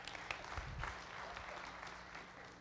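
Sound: audience applauding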